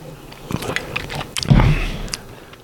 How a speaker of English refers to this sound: Damn, one more sip. That's all I got in me.